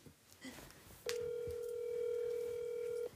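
A telephone number being dialed: a few faint, brief beeps, then one loud, steady electronic tone holding for about two seconds before cutting off abruptly.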